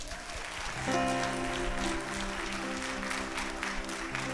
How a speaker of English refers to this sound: We want to give a special thank you and a special hand clap to our online audience. Let's give them a big hand.